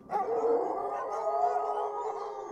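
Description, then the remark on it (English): A small white beast lying on a forest floor gives a strange baying from its belly, one long, wavering howl-like cry held for a couple of seconds, fairly loud, with no one speaking. “The barking sound grew louder, and Palamedes realized that it was coming from the creature's belly.”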